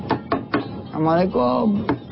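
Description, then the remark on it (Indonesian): Three sharp knocks on a door ring out, a voice calls out briefly, then two more quick knocks follow. “Tidak sedikit kemudian orang-orang kaya mengetuk pintu sahabat-sahabatnya yang miskin.”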